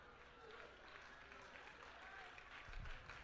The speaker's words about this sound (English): You see, y'all said that was a weak hand clap. Because there's a conviction that's going on in the room, because some of you are reserving yourself for your opportunity.